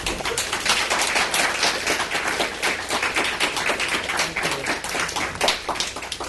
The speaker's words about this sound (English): And I'll just cut it short and allow you to please applaud loudly once and then afterwards again